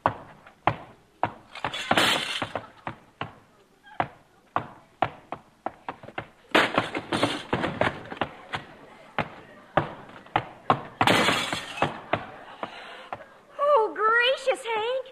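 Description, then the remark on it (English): A clattering run of thuds and bangs as a clumsy visitor in a parlor knocks over an end table and breaks the legs off a sofa, with a few bright bursts of breaking glass as a foot goes through the front window, then a warbling voice cries out at the end. “In the end table, you broke the legs off the sofa and stuck your foot through the front window.”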